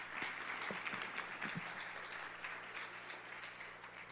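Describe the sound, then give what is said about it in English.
A crowd claps steadily, a dense patter of many hands that stays at an even, moderately loud level for several seconds with no voices over it. “Give her a big hand applause.”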